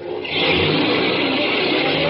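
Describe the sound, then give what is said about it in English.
A cab's engine revs up loudly as it drives off, holding a steady, rising roar, with a broad mid-pitched growl that swells after a brief quieter start and stays strong to the end. “I could could hear the cops running down the stairs as I ran out through the door and jumped into a cab and got out of there.”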